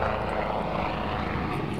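A helicopter with a spotlight, searching for someone, drones steadily overhead, its rotor and engine noise forming a continuous, even rumble with no voices over it.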